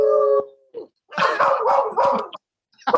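A dog howls: one steady, drawn-out note, then a run of loud, wavering yowls in quick succession, with short pauses between, and no talking.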